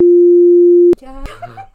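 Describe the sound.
A single loud, steady electronic beep tone holds for about a second, then cuts off abruptly as voices take over and people talk.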